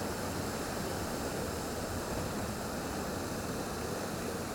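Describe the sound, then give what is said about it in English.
Water washes steadily around a kayak paddling forward on the sea in swell toward a waterfall, a continuous rushing hiss with no distinct strokes or pauses, moderately loud and without any voices. “I find it a playful place as well, so I'm paddling forward now as close as I can get.”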